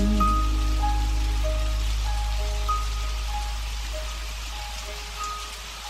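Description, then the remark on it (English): Steady rain patters on a hard surface, a continuous wash of drops with a low rumble underneath and a few faint tonal chimes drifting through; no voices. “So if life has left you kicking up dust, keep listening, keep looking up, and grab your umbrella, get ready to sing in the rain.”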